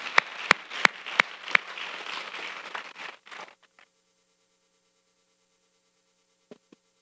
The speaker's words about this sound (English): Come on, you can clap for that.